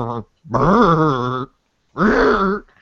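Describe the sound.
A man's voice mimics a car engine straining to start in the cold: a short grunt, then two long, strained, wavering groaning bursts separated by a brief pause.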